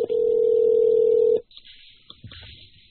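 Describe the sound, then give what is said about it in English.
A phone call to a regular phone rings out: one steady, fairly loud ringing tone holds for over a second, then cuts off abruptly, leaving faint line noise and a few soft clicks. “So we're going to try to call him on his regular phone this time, and maybe we'll have our sponsor on for more than a minute this time.”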